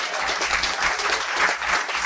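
An audience applauds steadily, a dense wash of many hands clapping at once, fairly loud, with no voices rising above it for the whole stretch.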